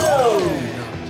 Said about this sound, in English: … eventually takes fuck off. Throws like a glass down on the floor